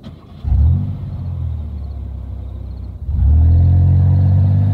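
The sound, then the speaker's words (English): A car engine starts up with a deep, rumbling rev, holds a steady growl, then surges louder in a second hard rev as the car drives away, with no voices. “I watched in horror as they unceremoniously tossed the man in the trunk and drove away.”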